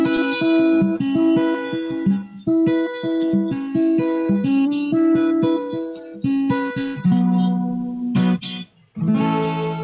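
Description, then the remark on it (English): An acoustic-electric guitar plays a steady strummed and picked passage with the chorus effect set about halfway and no reverb, giving a shimmering, slightly doubled tone. It is fairly loud, with no voices. “We'll go about halfway on chorus. We'll take off the reverb.”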